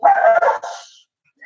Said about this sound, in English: I have kids in my house and dogs, and sometimes the kids start moving, the dogs start barking.